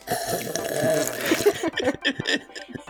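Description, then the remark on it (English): A long, loud, airy slurp of hot coffee lasts over a second with a gurgling, wet rasp, followed by a few choppy bursts of voice. “It was just a really loud slurp.”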